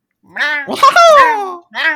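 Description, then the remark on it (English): A person imitates a cat's meow as the sound of a favorite Mario character, with a short opening call, a longer whiny meow that slides downward in pitch, then a brief final mew. “Wow. Meow.”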